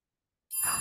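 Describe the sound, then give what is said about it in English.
After a brief silence, a bright notification bell chime, played by pressing a button, rings out once, fairly loud, its shimmering tone sustaining to the end with no talking. “I usually press the button in advance because in anticipation of you finishing your sentence as I hit the bell.”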